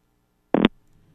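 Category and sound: signal or alarm, phone line ringing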